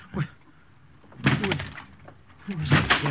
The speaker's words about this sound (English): What right have you coming in like this, breaking down the door?